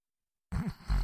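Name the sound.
imitated snore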